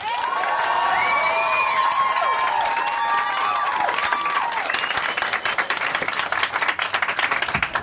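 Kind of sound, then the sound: crowd, audience applause voting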